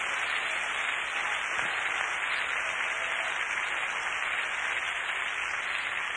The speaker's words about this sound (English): Clap your hands and thank God for your salvation right now.